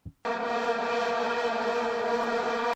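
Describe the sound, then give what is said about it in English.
A vuvuzela horn, played from a soundboard, blares one steady, buzzing low note for about two and a half seconds, loud and unbroken, with a harsh, reedy tone full of overtones, then cuts off abruptly. “It's a little vuvuzela. Vuvuzela. It's that weird horn that they play at soccer games.”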